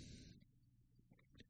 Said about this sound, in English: Sorry for the burp. I apologize, not very professional.